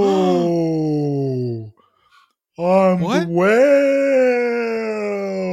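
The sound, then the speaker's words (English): Someone imitates a whale's moaning call: a long, low droning moan, a short pause, then a warbling upward swoop that settles into another sustained, loud moan. “I think the whale's trying to talk to us.”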